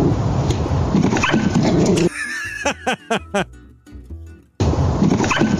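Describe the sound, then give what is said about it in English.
A dog lets out a quick run of about four sharp, high barks at the mailman, in a brief quieter gap between stretches of louder talk and background noise. “I mean, the dog's okay, obviously. It continues to bark at the mailman afterwards.”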